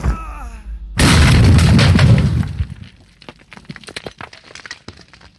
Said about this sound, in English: The grenade landed. Just before it exploded, one of the Germans got a shot off. A single bullet struck the British colonel in the chest and he slumped to the ground.